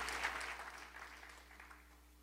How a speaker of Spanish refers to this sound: Aplaudan bien, amados, ¿ok? Aplaudan bien. Si van a aplaudir, aplaudan bien.